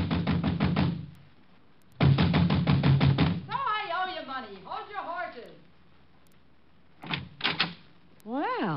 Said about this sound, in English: Then I headed for the village fast. I was soon banging on a door there like a drummer playing Bob.